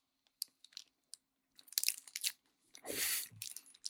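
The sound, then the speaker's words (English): Scattered crinkles and clicks of a Twinkie's plastic wrapper being handled, a longer rasping tear as it opens, then a soft bite and chewing of the Twinkie, with no talking. “Convenient interference because I have a Twinkie today.”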